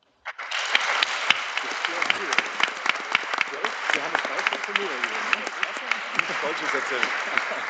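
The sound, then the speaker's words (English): A crowd at the SEO's Webmasters on the Roof All-Stars panel breaks into sustained applause, a dense wash of overlapping claps with sharper individual hand claps popping out, steady and fairly loud for several seconds. “And I want you guys to say a big thank you to you guys, and even you guys clap at home for those incredible guys helping me on tonight, for the SEO's Webmasters on the Roof All-Stars panel.”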